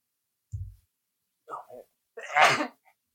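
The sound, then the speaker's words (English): A single sneeze: a couple of short catching breaths, then one sharp, breathy burst, with no talking. “Bless you.”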